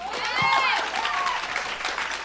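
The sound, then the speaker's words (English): Only the women in an audience clap, in a dense, steady patter for about two seconds. A few high-pitched whoops and cheers rise over the applause. “Just the women clapped.”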